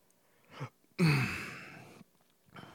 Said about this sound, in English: Excuse me. It's like burp number 4, 5, and 6.